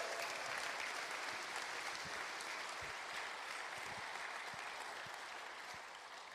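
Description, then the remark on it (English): A church audience applauds a fourth-grade boy who was baptized the day before, a dense, even wash of many hands clapping that holds at a strong level throughout and eases slightly toward the end, with no one speaking. “Give him a hand.”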